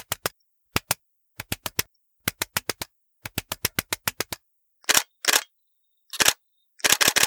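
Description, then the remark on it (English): Pigeons being fed tap their beaks on century-old stone steps in front of a yellow church, in quick, irregular clusters of sharp, dry clicks, followed by a few louder, noisier bursts toward the end. No voices. “The beaks of the birds tap rhythmically on the century-old rocks of the stairs, tip, tip, tip, tip, tip.”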